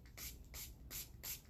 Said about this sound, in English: Okay, so my Pixie Glow Mist. I've already used it up. But the bottle and the spray are perfect for decanting your other mists into it because the spray is glorious. Let me just give you a spray.